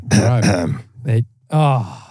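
Three loud, close throat-clearing bursts right into a microphone, a longer rumbling one, a brief catch, then a final drawn-out clear, with short pauses between them and no talking.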